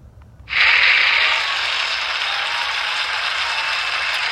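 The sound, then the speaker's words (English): Applause suddenly erupts after a brief quiet moment, a dense, steady wash of clapping that holds at a fairly loud level for several seconds without letting up. “Cue the applause.”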